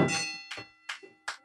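The Birdwell gavel strikes the Kenny Bell, a small bell, four times in quick, fairly even succession, each hit a bright metallic clang that rings on briefly between strikes, clear with no talking.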